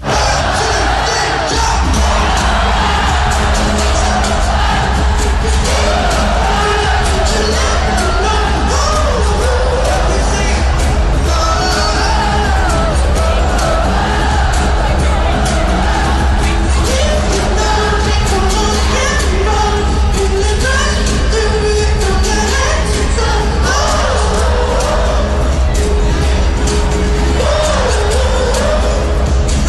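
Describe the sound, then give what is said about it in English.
A large concert crowd at last night's concert roars and sings along loudly, many voices rising and falling in melodic swells over a steady, dense wash of noise that never lets up. “And he was brilliant last night for getting the crowd involved in everything.”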